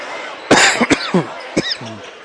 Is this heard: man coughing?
yes